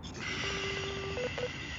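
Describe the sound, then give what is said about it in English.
Outgoing phone line sounds: a steady electronic tone with a quick run of pulsed beeps, then two short beeps, like a call being dialed and left unanswered. No voices are heard. “Since nobody wants to answer the phones. Nobody answering the phone, so we're gonna get this party started.”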